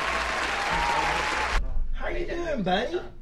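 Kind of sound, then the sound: sound effect, applause sound effect played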